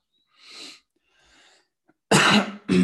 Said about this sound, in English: This is going to be really annoying for whoever's listening. You're going to have to listen to me cough all day long.